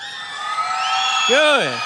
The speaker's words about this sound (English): Kids, where you at? Yeah, come on. Hey, it's okay to scream in here. Where are you at?